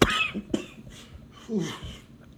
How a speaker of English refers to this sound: Like I said, still dealing with a cough. It's almost over though.